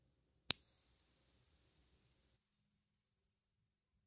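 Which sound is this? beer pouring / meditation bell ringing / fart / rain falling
meditation bell ringing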